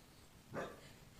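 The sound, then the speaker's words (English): A single short, somewhat muffled dog bark rises briefly out of a quiet background hum and then fades, with no talking. “I'm going to deal with the dog situation.”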